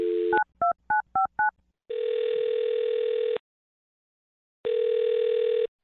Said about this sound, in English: I'm going to dial his phone right now. Here we go.